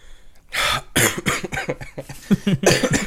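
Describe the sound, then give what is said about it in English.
A coughing fit: several harsh, rapid coughs in quick succession with brief raspy gaps, loud and raw, ending in a final strong hack. “Hey, guys, still got my cough.”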